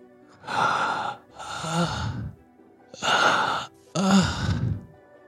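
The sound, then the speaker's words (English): Four heavy, wispy breaths in two pairs, each a drawn-out inhale followed by a strained, groaning exhale, voiced by a person imitating someone breathing painfully deep in a cave, with a pause between pairs. “Someone breathing kind of wispily and almost painfully.”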